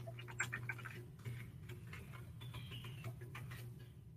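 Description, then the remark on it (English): Keyboard typing into an online chat: quick, irregular light clicks and taps in uneven bursts, fairly soft, over a steady low electrical hum, with no one speaking. “So I'm typing this out.”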